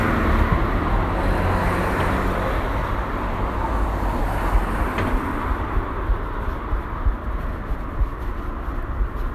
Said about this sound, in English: Traffic noise is quite bad though, I realise.